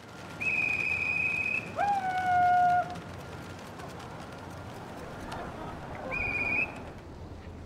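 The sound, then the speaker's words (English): Pigeons fly overhead on an evening show, swooping, gliding, spinning and diving through the night sky, with sustained, pure whistling tones: a high steady note, a brief lower one, then the high note again, fading in and out over a soft outdoor murmur. “But on another much drier evening, the show did go on to a sold-out house, and the pigeons put on quite a show.”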